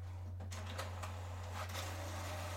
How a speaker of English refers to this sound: Is it printing the notes? I don't know what it's doing. We have a possessed printer. It's okay. It's low on ink. It'll die soon.